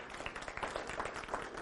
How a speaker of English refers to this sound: Somebody give God a big hand clap. Can you do that?